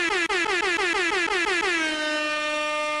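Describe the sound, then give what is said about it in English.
A loud, brassy air horn sounds in a rapid string of short stuttering bursts, then settles into one long sustained blast that holds to the end, with no voices present. “Or just make an air horn pop up each time.”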